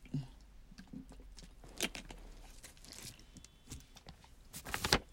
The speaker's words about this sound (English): excuse me. I need a drink of water.